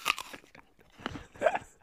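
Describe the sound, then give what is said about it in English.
Loud, crunchy chewing in two bursts of bites separated by a short pause, wet and gnashing, with no voices over it. “I was just standing around chewing on hands.”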